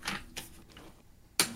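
A chair being roughly shoved about: three sharp, clattering knocks spread irregularly over a second and a half, with the last one loudest and a faint creak trailing after it. No one speaks.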